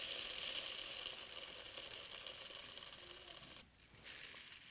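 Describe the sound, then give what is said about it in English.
Wheat grains are poured into a sieve to be sifted, with a steady, soft, hissing patter of many tiny impacts. The sound briefly thins out near the end before the trickle resumes. No voices. “And so we take this wheat, and we pour it into the sieve.”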